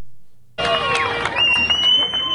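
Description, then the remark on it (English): After a brief quiet moment, a crowd of residents in Rostov-on-Don, Russia, abruptly breaks into loud, dense cheering and applause as Wagner group leader Yevgeny Prigozhin leaves the city, a steady roar of voices and clapping with a few high whistle-like tones running through it. “To a chorus of cheers and rounds of applause, the leader of the Wagner mercenary group, Yevgeny Prigozhin, bids the residents of Rostov-on-Don goodbye.”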